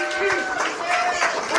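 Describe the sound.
Audience applause with crowd noise, a steady dense wash of clapping lasting the whole short stretch, with cheering voices and a few whistle-like tones riding over it.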